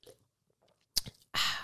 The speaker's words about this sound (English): So let's take a sip of our energy drink.